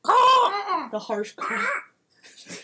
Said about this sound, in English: And up ahead, over one of the fences, you see a dim figure moving sluggishly in the mist, and you hear the harsh call of crows.